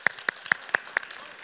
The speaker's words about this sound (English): Just give me a little bit of clap right now. Just one.